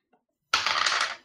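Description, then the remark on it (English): Dice, rolled by a player to determine damage in a game, clatter and tumble across a hard tabletop in one bright burst of rattling that lasts under a second before settling to a stop. “And I'm going to roll my dice to damage it.”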